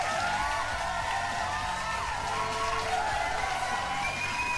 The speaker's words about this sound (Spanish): Nuestra primera estrella porno de la noche es la hermosa, la venezolana, la morenita, la hermosísima Venus Afrodita. Un pinche aplauso.